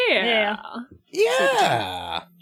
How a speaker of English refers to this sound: Well, now that you're yawning, I think it's time to put this one to bed.